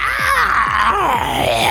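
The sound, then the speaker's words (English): A loud, harsh, horrible and grotesque beastly screech from behind that persists without a break, its raspy tone wavering and bending up and down in pitch, with no voices present. “But then suddenly you just hear this almighty screech from behind you.”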